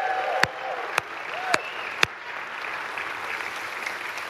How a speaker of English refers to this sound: So I want to give a special shout-out, and we're going to cheer for this, to the fellas at the Rapid City Minimum Unit, the local prison.